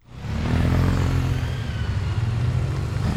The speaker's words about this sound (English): The parking lot is filling up with motorcycles, not a typical sight for Saturday morning.